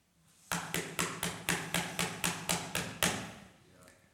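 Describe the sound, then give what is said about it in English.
A rapid, steady series of about eleven loud knocks on a door, evenly spaced, then fading to quiet with no talking. “I will knock all night.”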